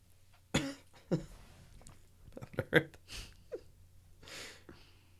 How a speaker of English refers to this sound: That was weird. I tried to swallow a burp and it did not work out.